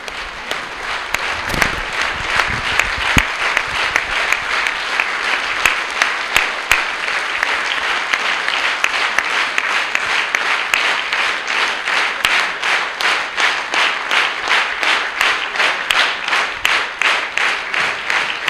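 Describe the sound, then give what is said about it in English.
A large audience applauds at the end of a show, steadily for the whole stretch, a dense, loud wash of many hands clapping with no voices, the claps turning sharper and more evenly spaced toward the end. “I just wanted to get a bit of the applause.”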